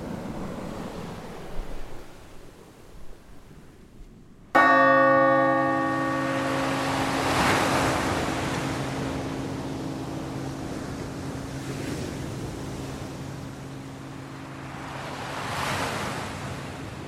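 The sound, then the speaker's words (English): Ocean surf rolls in slow swells onto a shore, waves breaking every few seconds over steady wash, while a single deep bell strikes and hums on, fading gradually beneath the water. “And when people come and sit and gaze at the ocean, if you believe they're putting energy into something, into prayer, into thought, it's being absorbed by the waves.”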